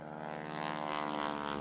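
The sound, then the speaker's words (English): A propeller airplane flies low over houses, droning loudly and steadily, its engine giving a buzzing, harmonic hum with a faint rhythmic pulse, with no voices. “Peter began flying his airplane low over houses.”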